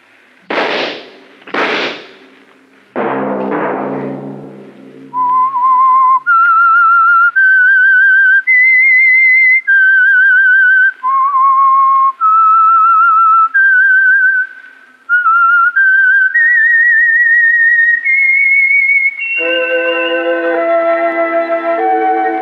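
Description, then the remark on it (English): A lone, clear whistle carries the slow, wandering theme melody of a Sunday night program, with held notes, preceded by two sharp percussive hits and ending as a sustained musical chord takes over. No one speaks. “Whistle be your signal for the Signal Oil program, The Whistler, each Sunday night at this same time”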